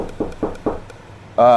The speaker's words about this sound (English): I'm going next door and knocking on the door